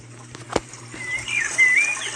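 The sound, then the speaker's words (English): A bird in the woods chirps and whistles in short rising and falling phrases, with a quick flutter of wings early on, over a steady low hum and no voices. “As this bird sung around you, and your uncle put his rifle away, he notices something lurking around.”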